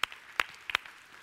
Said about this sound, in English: And you can see, yeah, absolutely, you can applaud that, absolutely.